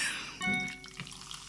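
A drink is poured into a glass, a brief splashing gush with a faint ringing tone that fades into softer trickling and a few small drips.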